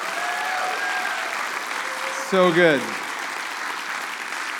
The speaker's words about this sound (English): I think we need a big applause for this. This is pretty cool.